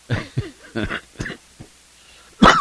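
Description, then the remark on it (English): A person coughs repeatedly, a run of short, rough bursts spaced about half a second apart, then a pause and one louder, harsher cough at the end. “Yes, I still have a cough.”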